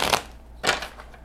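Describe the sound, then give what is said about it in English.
A deck of cards being shuffled, with two loud crisp riffling bursts and a softer third, papery and bright, no one talking. “The shuffling part is probably going to be louder than necessary, but maybe it's fun.”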